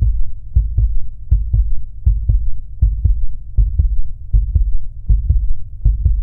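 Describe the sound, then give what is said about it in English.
A baby's heartbeat thumps in steady doubled beats, muffled and low, repeating evenly over a soft continuous hum, as if picked up by a monitor. No voices. “It's not just a heartbeat. It's your baby's heartbeat.”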